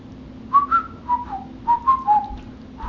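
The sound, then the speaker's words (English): A person whistles a short melody, clear tonal notes rising and falling in a phrased tune with brief pauses between groups, over a faint steady background hum. “Well, all right, let me whistle my song.”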